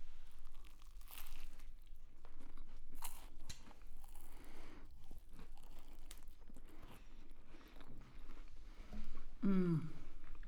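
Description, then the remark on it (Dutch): Crunching and crinkling as someone bites into and chews a flaky pastry topped with a good layer of whipped cream, with soft mouth noises throughout and a brief appreciative hum near the end. “Ik wil graag gewoon nu een hapje nemen”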